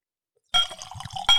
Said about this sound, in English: Ooh. Heavy pour.